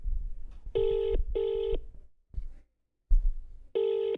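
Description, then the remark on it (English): Telephone dialing tones sound fairly loud as a call is placed to a caller: two steady, buzzy electronic tones of about half a second each, a pause with faint knocks and rustling, then another matching tone. “We're going to phone our private caller.”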